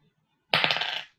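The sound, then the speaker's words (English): A sudden clatter of a die rolled across a hard tabletop during a tabletop role-playing game to resolve a bow attack, landing on 16: a quick burst of bright rattling clicks that bounce several times and fade out within about half a second. “All right, I rolled a 16 plus 6.”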